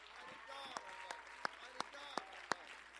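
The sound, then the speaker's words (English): A group claps hands together in a steady, even beat, about three sharp claps per second, with voices carrying on faintly underneath; an audience clapping to praise the Lord. “Oh, clap your hands and let's praise the Lord.”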